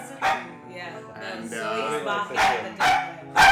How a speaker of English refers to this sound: And for those of you guys who don't know who Zoe is, it's our dog who's also been around this podcast recording.